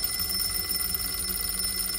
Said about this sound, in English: At 12 midnight, a silence descended in the office. The phone rang.